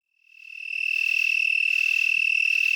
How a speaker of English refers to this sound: We leave you this week in the company of Ecanthus latupennis. Despite its name, the broad-winged tree cricket lives among low vegetation like goldenrod and other coarse weeds of the eastern United States.